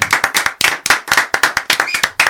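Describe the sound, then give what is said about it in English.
A small group on a show claps for beat makers after their beats were played, quick, uneven bursts of sharp smacks overlapping into a loose, lively patter that keeps going steadily for a couple of seconds, fairly loud, with no voices. “Let's clap it up for … one time.”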